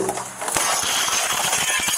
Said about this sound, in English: A house is ablaze and a little boy is trapped inside. A deputy sheriff smashes the window.